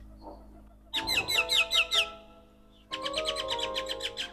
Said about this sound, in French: Je voulais enregistrer les oiseaux. En Martinique, les oiseaux sont partout. Ils chantent tous de manière différente. Alors, je voulais commencer mon album avec le chant des oiseaux.